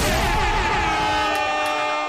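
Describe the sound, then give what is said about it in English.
A loud, blaring air horn sound effect holds steady for about two seconds, its brassy, buzzing tone layered with bright harmonics and no break in volume. “Not even the air horns got him.”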